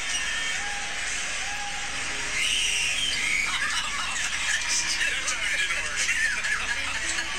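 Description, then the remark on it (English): A woman fan's high-pitched screams rise repeatedly above the steady roar of an NBA basketball arena crowd, piercing and distinct among the general chatter and noise, as she screams when the Raptors shoot. “You're hearing when Raptors shoot, she's screaming.”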